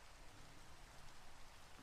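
Steady rain falls in a continuous, even hiss, with soft patter across a broad wash of noise and no other sounds or voices standing out.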